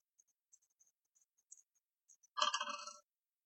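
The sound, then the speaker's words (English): A few light, scattered clicks, then a short, loud burst of clattering as two dice are rolled in a game, tumbling and settling, with no voices. “Take one away, roll 2.”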